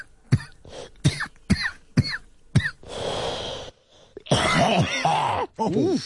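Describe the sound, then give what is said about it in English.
A rapid series of harsh, guttural coughs from a woman bursts out, followed by a rough, rasping throat-clearing and a drawn-out gravelly groan, loud and unaccompanied by talk. “Her cough became Klingon.”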